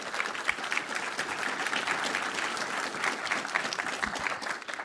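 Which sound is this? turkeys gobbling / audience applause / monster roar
audience applause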